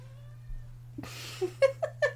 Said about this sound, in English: As the kitty meows to remind you of your pact with the devil.